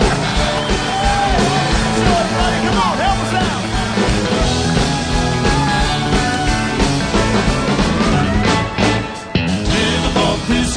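A crowd applauds and cheers loudly and steadily, with whoops and yells rising over the dense wash of clapping, briefly dipping near the end before surging again.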